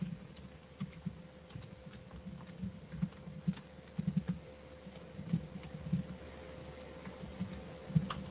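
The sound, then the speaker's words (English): Soft keyboard typing while answering a private message: irregular bursts of quick, dull key clicks with brief pauses between them, over a steady low hum and no talking. “I hate multitasking and typing and trying to talk at the same time always fucks me up.”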